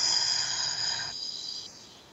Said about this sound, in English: Breathe in through your nose. Out through your mouth like through a straw. Wonderful. Again, in through your nose. Out through your mouth like through a straw.